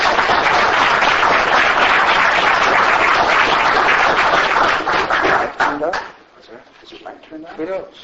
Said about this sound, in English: So if you could give him a round of applause.